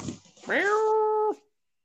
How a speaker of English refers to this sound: It's my goat, dude. Oh, the goat. That's right.